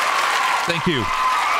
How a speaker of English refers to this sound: I want applause for Jeff, please.